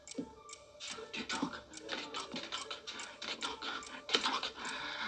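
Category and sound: household object, clock ticking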